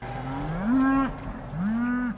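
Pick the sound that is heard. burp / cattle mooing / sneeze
cattle mooing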